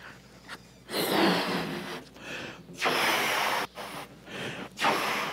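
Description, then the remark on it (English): Someone blows up a balloon in four or five strong, airy puffs of breath, each a loud breathy rush broken by brief pauses for inhaling. No one speaks. “So let's take the balloon and let's blow it up.”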